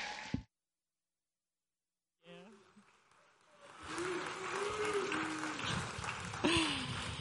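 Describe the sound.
After a brief sound and a couple of seconds of silence, an audience breaks into steady, loud applause with scattered cheering voices that keeps going to the end, welcoming a woman coming up to give the word of the Lord on a Mother's Day morning.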